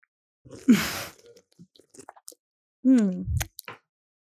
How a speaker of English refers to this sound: Let me, you know what, get a little sip real quick, guys. Get a sip out of this drink. Yeah. Cheers. Cheers.